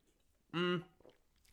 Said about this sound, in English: More sips of my cider.